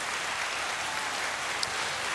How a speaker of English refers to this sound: Here's a new segment. Let me bring up some applause for the new segment.